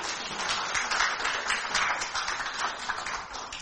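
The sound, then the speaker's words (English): An audience applauding: a dense, steady wash of many hands clapping at once, holding an even loudness for nearly four seconds with no voices over it. “A hand clap on that.”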